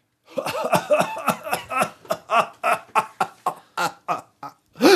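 A rapid, relentless whooping cough paroxysm of about fifteen sharp, loud coughs, barely pausing for air, ending in a strained, high-pitched gasping intake, the inspiratory whoop.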